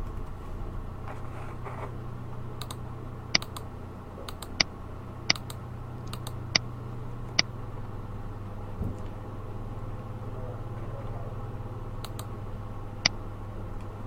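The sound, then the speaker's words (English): Scattered sharp clicks and taps from a computer keyboard and mouse while entering grades in the Grade Center, about a dozen irregularly spaced, over a steady low machine hum, with no one speaking. “GradeCenter allows instructors to enter grades simply by clicking on the cell where the grade needs to be adjusted.”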